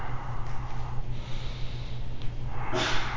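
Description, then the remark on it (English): A single sharp, breathy sneeze bursts out during a yoga class near the end, following a few seconds of soft, noisy breathing with a low steady hum underneath; no one speaks. “Bless you.”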